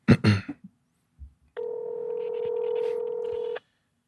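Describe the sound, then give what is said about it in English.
A few quick handling clicks and bumps, then a steady electronic phone-keypad tone held for about two seconds, clear and close, with no one talking. “You can call them and just put on the mic.”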